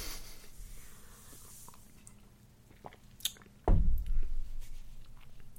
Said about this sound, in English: Smoothness? I'll take one more sip.